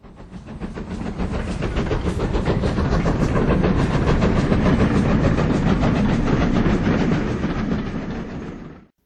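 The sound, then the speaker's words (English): An express train rolls steadily along the rails, its wheels beating a rapid, rhythmic clatter over a loud, continuous rumble and hiss. The sound stays strong before easing off at the end. “calls travel by express train a tiring affair, adding that her young daughter had had to lie down because the train made her head go round like a mill.”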